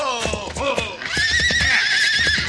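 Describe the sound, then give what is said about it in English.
A horse whinnies loudly, a long quavering neigh rising and wavering for over a second, with low thumping movement underneath. “Head off that horse, Max.”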